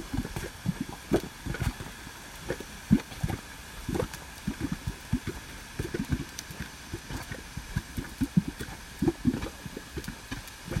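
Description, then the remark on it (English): Bubbling mud pots in Yellowstone Park glop and pop in quick, irregular bursts, a steady run of low, thick blurps and plops against a soft background hiss, with no one speaking. “So yeah, let's listen to the Mud Pots bubble in Yellowstone Park”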